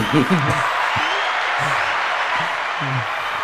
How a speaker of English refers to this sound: He needs more than a clap. He needs a prayer. Doesn't he?